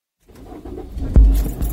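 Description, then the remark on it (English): A car engine cranks and catches, a sharp burst followed by a steady low rumble that builds as the car drives off, with no voices. “Before I knew it, I was in my car driving to his place.”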